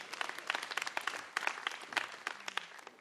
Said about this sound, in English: Yeah, you can clap, it's okay.